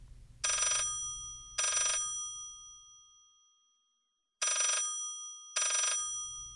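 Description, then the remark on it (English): An old-style telephone bell rings in two double bursts, loud, with a bright metallic jangle and a pause between the pairs over a faint low rumble. “Let's face it, picking up the phone one day or one early morning in October and hearing a voice with a Swedish accent assuring you that the Nobel Committee had not, in fact, misdialed, well, that would certainly be music to a scientist's ears.”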